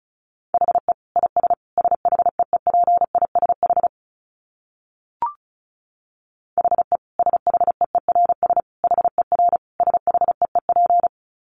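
Fast Morse code at 35 words per minute: a single steady mid-pitched tone keyed into quick dits and dahs, in two long runs separated by a pause with one faint click.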